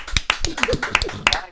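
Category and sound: crowd, hands clapping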